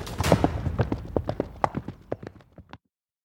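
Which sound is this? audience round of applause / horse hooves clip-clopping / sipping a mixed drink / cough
horse hooves clip-clopping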